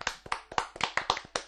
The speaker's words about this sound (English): But you know, so officially our stay at home notice has been taken away. Round of applause for that, guys.